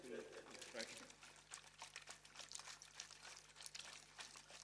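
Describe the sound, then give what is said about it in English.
Ice cold water pours steadily into a plastic bowl for several seconds, a splashy gurgle with fluctuating bursts, while a voice briefly speaks at the start. “Do you like ice cold water”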